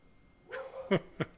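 An angry dog lets out a whiny, drawn-out yelp followed by two short, sharp barks, with no one talking over it.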